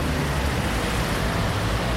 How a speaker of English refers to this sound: Black cabs, London sightseeing buses, white vans.